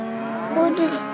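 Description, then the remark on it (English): A cow in a field lets out a long, low moo with a steady droning tone, loud, filling the short moment on its own with no talking. “I wonder if cows are friendly or not.”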